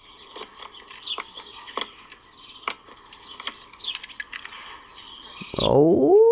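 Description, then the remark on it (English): Birds chirp and twitter steadily in the background, joined by sharp, irregular clicks, and a louder, lower warbling sound swells in at the very end. “The birds are singing, so it must be a certain time of day.”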